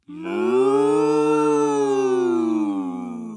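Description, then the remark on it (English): Two voices sing a long, held cow-like "moo" together, one an octave above the other, sustaining a steady, loud tone for about three seconds with a slight rise and fall. “This time you sing up octave moo, and I continue regular moo.”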